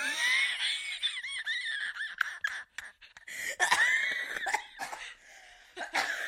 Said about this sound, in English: We're having a coughing fit on the podcast.